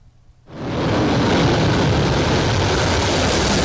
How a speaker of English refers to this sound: A South Korean F-15K fighter jet takes off from a runway, followed by an F-35A and a KF-16. On Tuesday, 20 military aircraft from the U.S. and South Korea engaged in joint exercises over the waters west of the Korean Peninsula.